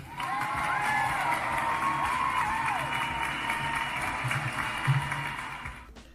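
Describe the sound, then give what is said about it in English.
An audience applauds steadily for about six seconds when asked to clap, with cheers and a few rising whistles or whoops mixed into the dense clapping before it stops abruptly. “Like, so, hold on, let me get a clap if you agree Canada Goose is the worst company in Canada.”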